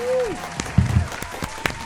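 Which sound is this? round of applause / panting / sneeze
round of applause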